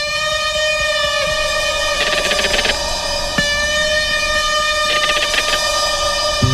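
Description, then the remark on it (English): A crested caracara (Caracara cheriway) gives hollow, rattling calls when disturbed: two short bursts of rapid clicking pulses, fairly loud, set against a steady, reedy harmonic tone that drones throughout. No one speaks. “Those are the hollow, rattling sounds the bird makes when disturbed.”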